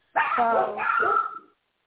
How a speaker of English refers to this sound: Sorry, those are my dogs.